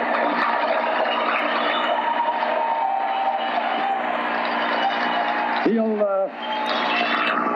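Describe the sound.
A hockey arena crowd cheers Lindros's 50th goal, scored in 49 games, in a loud, sustained roar of many voices. Near the end, a brief wavering tonal sound briefly cuts through the noise.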